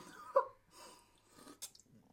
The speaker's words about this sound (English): I'm on just going to sip on my juice and keep on our business.